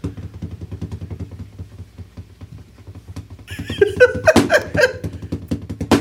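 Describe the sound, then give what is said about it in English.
Fast, steady drumming on a desk chair as a song cover, a dense stream of quick muffled taps. Louder, sharper accented hits join in the second half, along with some brief vocal sounds and a phone ringing in the background. “Like a legit good drummer, like drumming on a desk chair.”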